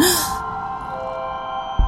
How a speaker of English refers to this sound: … unwraps it and presses the on switch and gasps.